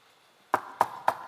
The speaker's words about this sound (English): Knock. With shameless persistence, knock. In fact, knock right now on your chair or on your neighbor's head. Knock on something.